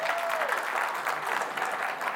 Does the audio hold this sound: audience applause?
yes